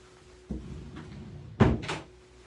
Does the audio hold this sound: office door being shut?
yes